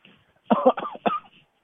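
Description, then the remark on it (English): A quick run of three fairly loud coughs, one right after another, with no talking around them, apparently a person acting out a coughing fit. “We even maybe start coughing.”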